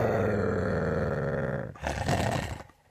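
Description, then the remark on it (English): A dog lets out a loud, sustained deep growl that swells into a harsher, rasping roar before trailing off, with no talking. “And here's the dog.”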